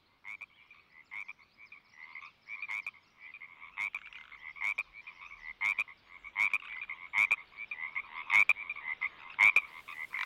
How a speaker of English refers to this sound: Little Washington small town surrounded by lots of forest, lots of rain, lots of water. Basically, it was surrounded by nature. So that meant every night I gotta fall asleep to the sound of frogs outside my house.